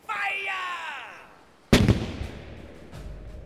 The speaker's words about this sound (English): The massive Mughal cannons opened up, spewing red-hot death across the glittering sea. Firing high, the hissing shots tear at the sails and rigging of the pirate band.